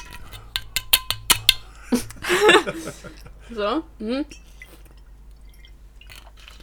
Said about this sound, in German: wie sie gerade aus der Wasserflasche trinkt.